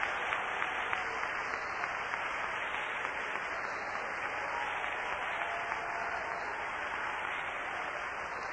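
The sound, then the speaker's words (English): An audience claps hands together in praise of the Lord, sustained applause in a dense, steady wash of many overlapping claps lasting several seconds with no voices standing out. “Hey man, let's all give the Lord a hand clap of praise.”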